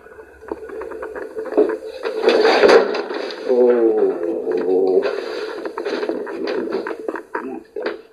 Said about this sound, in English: Door slammed on him.